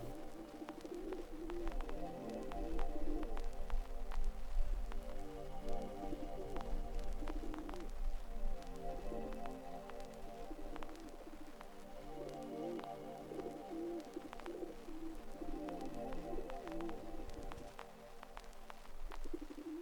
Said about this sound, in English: Some pigeons are roosting somewhere in the rafters of the roof.